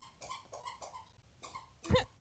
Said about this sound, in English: Sorry. So, my dog decided to join in and has a squeaker toy.